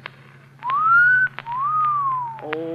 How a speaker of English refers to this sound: Well, then you should have made the whistle shorter, like this.